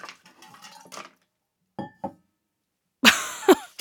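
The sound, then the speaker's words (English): An entire cup of water spills onto the floor of a closet: a couple of brief clinks and knocks, then a loud, sudden splash that sprays out for about half a second before stopping. No one speaks. “I dumped an entire cup of water all over the floor in my closet, so we're going to go clean that up, and I'll be right back.”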